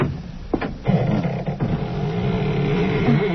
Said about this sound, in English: Doesn't sound as though that door had ever been opened. Well, a little oil on the hinges will fix that, all right.